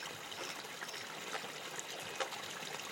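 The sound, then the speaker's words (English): Water laps and trickles gently against large logs in a steady, soft wash, with a few brief splashy ripples breaking through. No voices are present. “Listen as the water gently laps against these giant logs.”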